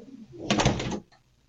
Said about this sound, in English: Yeah, just shut the door.